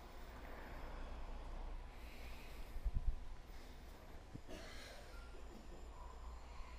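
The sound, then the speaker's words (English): Soft, hissing ujjayi breaths during yoga practice rise and fall in slow, steady waves like an ocean, quiet, with no talking over them. “Ujjayi breathing.”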